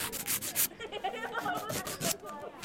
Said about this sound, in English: While the bus monitor filed her nails